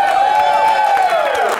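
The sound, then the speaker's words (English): Steady applause from an audience with scattered claps and crowd noise, and a loud, sustained whistle gliding over the top for the whole moment. “I think you asking for applause should have gotten more applause.”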